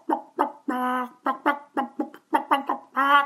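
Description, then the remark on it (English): A person does a bird impression into a phone, voicing a rapid series of short, clucking calls broken by two longer, drawn-out squawks. Clear and fairly loud, with nothing else in the background. “So as a result, we have an unexpected extra benefit of this collection of bird impressions and whistling and squawking children and other things.”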